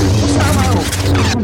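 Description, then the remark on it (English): A loud, steady electric lightsaber hum with buzzing low tones runs continuously under dense crashing and clattering as a whole room is smashed up with the lightsaber, for the whole short burst. “What are you doing? Smashing up the whole room with a lightsaber.”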